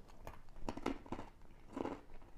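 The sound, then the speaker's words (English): Crisp crunching from someone biting and chewing dill pickle-flavored pretzel braids, with several sharp bursts spaced irregularly over a couple of seconds and no talking. “You get that crunch, just like a pickle.”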